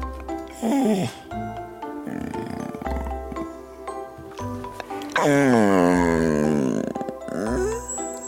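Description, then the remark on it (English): A big, drawn-out yawn from a dog as it climbs into its bed and settles in, loud, its groaning pitch sliding downward, with shorter grunts and snuffling sounds leading up to it. “As he climbs in and gets comfy, he lets out one giant yawn.”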